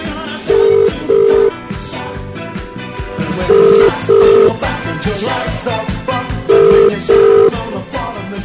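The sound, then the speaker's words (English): A telephone rings in three bursts of paired tones, loud, repeating over a busy music bed with no talking. “It's ringing.”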